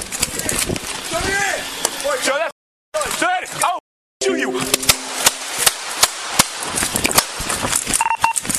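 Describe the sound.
A rapid, irregular burst of many sharp, loud gunshots cracks over shouting voices, with a pair of short electronic beeps near the end.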